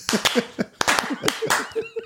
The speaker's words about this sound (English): That's worthy of just 2 claps. Hang on just a second. Thank you. Thank you. Yeah. Unbeknownst to us. They're still clapping. They are.